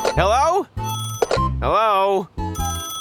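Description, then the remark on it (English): Telephones ring loudly at a police department in quick, overlapping bursts of steady electronic tones, with voices chattering over them in a busy, cluttered mix. “The phones ringing off the hook echoed across Forestville Police Department.”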